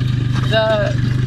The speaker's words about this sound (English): This one here, though, there's not enough fall, and so he does use over here a gasoline engine because it's too far to, too expensive to run the electric line up this way.